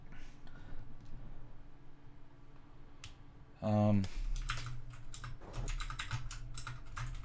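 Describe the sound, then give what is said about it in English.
Computer keyboard typing to roll a digital die: a sparse few key clicks, then a brief tonal hum, followed by a quicker burst of irregular, crisp keystrokes over a low background murmur. “Sorry, rolling a die. I don't have my physical dice.”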